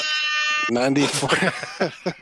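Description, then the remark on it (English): A single short, flat blast of an air horn sound effect, loud and buzzy with a steady pitch, cuts off abruptly as excited voices start talking over one another. “Fucking air horns to the sky.”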